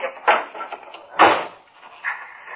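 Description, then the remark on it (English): A door opens and then swings shut a second later, two solid knocks with a faint rattle of the latch and some quiet background noise between them. “Boys, this way. Out through this door.”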